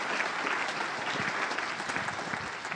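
An audience claps steadily, a dense, sustained wash of many hands at an even, moderate loudness for a few seconds, with no voices standing out.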